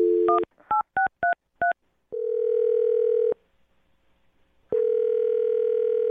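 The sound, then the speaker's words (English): A phone number is punched in on a keypad: five quick dual-tone beeps in an uneven rhythm, then a steady tone that cuts off, a pause, and the tone returns. No one speaks. “Okay, I'm going to dial her phone number right now, man.”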